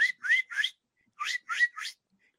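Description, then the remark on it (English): A person whistles an imitation of high-pitched chirping: two quick sets of three rising chirps separated by a short pause, moderately loud with no talking. “That's kind of like, it's a really high chirp, chirp, chirp.”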